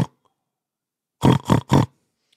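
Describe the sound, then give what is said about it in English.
A voice imitates a pig with three loud oinking grunts in quick, even succession, after a brief snort at the very start and a short silence. “You fat piggy, you. Oink, oink.”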